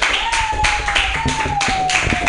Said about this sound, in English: Clap your hands wildly